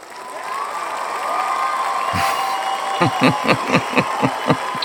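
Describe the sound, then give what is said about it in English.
A crowd murmurs and calls out, then applause breaks into a run of about eight sharp, evenly spaced claps over the chatter, loud and rhythmic toward the end. “Round of applause. Did you hear that?”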